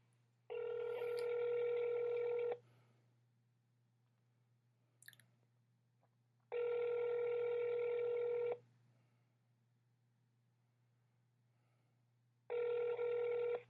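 A phone line rings out with three long, steady ringback tones, each about two seconds and spaced evenly apart, over a faint low hum and no voices, during a call to Senator Kyrsten Sinema's office.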